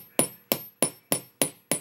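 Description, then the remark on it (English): Six crisp metallic taps from a small chasing hammer striking the end of a metal ear wire, coming down in a circular motion with little pressure, evenly spaced and steady, with no talking. “I'm going to be coming down in a circular motion, hitting just the end of my ear wire.”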